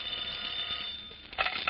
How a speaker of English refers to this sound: Special Agent Jim Taylor is studying a later report from the Cleveland field office about the stolen car gang when the telephone rings.